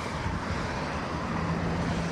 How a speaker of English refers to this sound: About 2,000 vehicles roll through the Cadrona Valley each day as they travel between Wanaka and Queenstown. Traffic starts picking up at about 6 o'clock each morning, acting as an alarm for Tui's Gully farmers